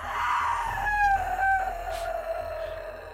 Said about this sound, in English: And then you hear a scream.